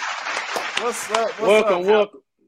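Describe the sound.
A burst of steady applause fills the first two seconds, with a voice calling out loudly over the clapping before everything cuts off abruptly into silence.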